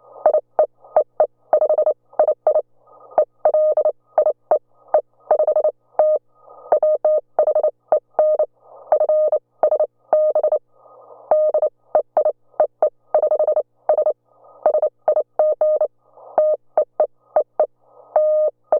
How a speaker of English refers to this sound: Here's an example of a conversation I had with my friend in Canada using American Morse code. See if you can hear the difference.